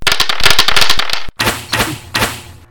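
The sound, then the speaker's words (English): Dice clatter across a hard tabletop in a quick burst of sharp clicks, pause briefly, then a few more rolling knocks and settling taps follow, fairly loud with no talking. “I think you need a new set of dice.”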